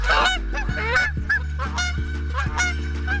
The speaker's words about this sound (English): Yep, those are the geese that may or may not start getting loud if you get too close.